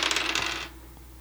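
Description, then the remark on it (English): Dice clatter and rattle across a hard tabletop in a quick burst of bright clicks, fairly loud, settling to stillness within about half a second. No voices. “And if I miss, I'll then you get new dice. I'm already he's switching already dice. New ones.”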